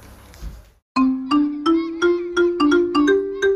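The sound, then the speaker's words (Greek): A school bell chimes at the end of a 15-minute break in a quick run of about eight bright, ringing strikes, each note slightly higher than the last, loud after a moment of faint background noise. “Πάμε να παίξουμε λίγο μπάλα μέχρι να χτυπήσει το κουδούνι. Ωχ, χτύπησε.”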